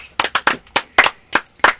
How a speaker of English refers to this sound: You know what? That yeah. Slow clap.